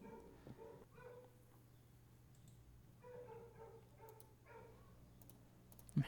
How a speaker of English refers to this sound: I'm hearing that dog. Dog drives me crazy. He lives next door. That dog lives next door.